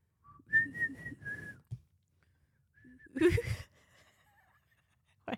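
Someone whistles a short pop melody, a handful of clear sustained notes close to the mic, then breaks off with a breathy laugh before a faint, wavering whistle trails away.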